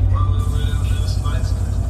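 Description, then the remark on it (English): A truck's big engine rumbles deep and steady, growling continuously and loudly through its exhaust pipes while the truck is on the move, heavy low growl throughout, with a voice faintly audible over it. “You literally hear the car in the track and we in the truck. With the big engine.”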